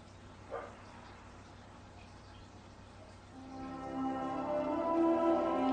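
A dog lets out a single short bark, then a drawn-out, tonal whining sound builds and grows louder toward the end, with no one talking.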